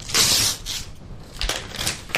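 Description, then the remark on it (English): Wrapping paper on a gift with a gold bow being ripped close to the microphone: a loud, hissing tear at the start, followed by several shorter crinkly rips and rustles. No one speaks. “And I try to rip the paper near the mic.”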